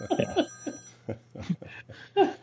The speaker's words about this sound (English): Let me turn off my phone here. That's my daughter. I'll have to call her back.